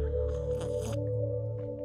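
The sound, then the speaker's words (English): A single wet, slurping sip of a drink lasting about half a second, rising over a steady low hum that continues alone afterward. No one speaks. “So then, now listen. I do another sip.”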